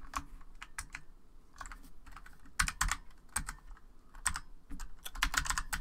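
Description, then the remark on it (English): Rapid, irregular clicking of keys being typed on a computer keyboard, fairly loud, with bursts of quick keystrokes and brief pauses, no voices. “Typing on a keyboard is not that hard.”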